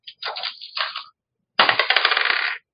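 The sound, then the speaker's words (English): Two bursts of hard plastic clatter, dice being rolled for a perception check, rattling and tumbling across a surface. The first is uneven and bumpy; after a short pause, the second is a steadier, rapid run of clicks. No voices. “And then let me roll a perception check on.”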